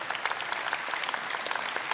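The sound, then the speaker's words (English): An audience claps steadily, a dense patter of many hands blending into a continuous, fairly loud wash of applause with no voices standing out. “If you don't know, yeah, y'all, clap.”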